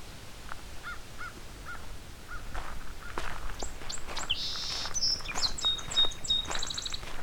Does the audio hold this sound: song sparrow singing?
yes